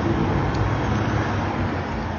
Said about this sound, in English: I feel like this dump truck is stopping.